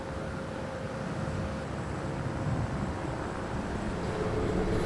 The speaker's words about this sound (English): We are doing chopper flights today. The first one's just departed. And that's a recce mission to look at when and how they're going to start ferrying people.